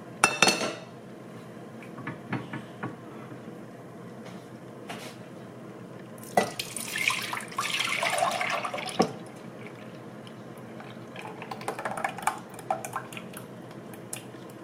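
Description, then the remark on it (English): Liquid is poured back into a pot with a splashing, trickling sound, some of it spilling, accompanied by clinks and clatter of metal cookware; no one speaks. “Now we're going to pour it back in here.”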